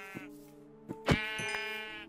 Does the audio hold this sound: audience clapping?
no